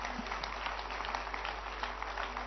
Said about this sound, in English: Clap your hands for this great principle.